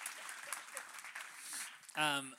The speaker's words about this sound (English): Yeah, really good. We can give a hand clap for that. Preaching.